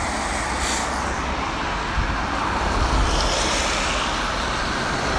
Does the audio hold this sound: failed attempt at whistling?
no